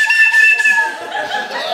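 A shrill train whistle is blown during a cast introduction at a live comedy sight gag show, in one sustained blast, its reedy pitch sagging slightly as it fades, with no one talking.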